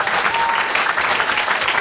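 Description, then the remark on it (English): Steady audience applause at a live show for Paul Nuttall, Deputy Leader of UKIP: a dense, even wash of many hands clapping that holds at a constant loud level throughout, with no voices standing out. “But for one last time, give it up for a wonderful sport, Mr.”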